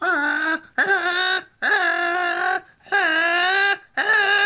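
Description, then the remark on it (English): Five loud, drawn-out caws blown on a crow call in a wind-up crow calling sequence, each nasal and harmonically rich with a quick upward scoop at the start, separated by brief pauses. No one speaks. “It's as if a crow is becoming aggravated, and then he hits him with that at the very end.”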